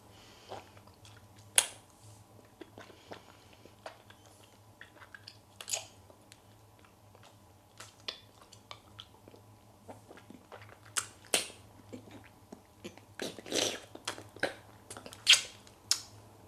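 Teeth clack and scrape against a very hard candy lollipop, too hard to bite a piece off, in irregular sharp clicks, with brief crunchy bursts growing denser toward the end over a low steady hum, and no talking.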